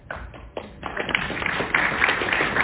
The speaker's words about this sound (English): Let's applaud them. Thank you.